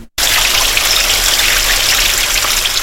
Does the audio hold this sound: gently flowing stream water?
yes